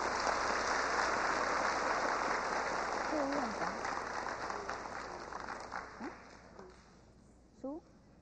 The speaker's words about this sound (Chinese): 现在我们是不是以热烈的掌声欢迎施市长上来为我们讲几句话？ 请他们上台啊。 请我们再以热烈的掌声欢迎施市长。